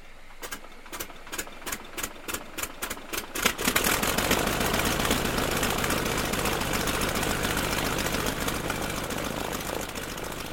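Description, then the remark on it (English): A small two-stroke engine powering a flying model of a Tiger Moth (DH-82), built of plywood and fabric, sputters with a series of evenly spaced pops, then catches and screams into a steady, high-pitched buzzing drone, loud, with no voices. “he built a beautiful flying model of a Tiger Moth, with plywood and fabric just like the original, and powered by an itty-bitty two-stroke engine.”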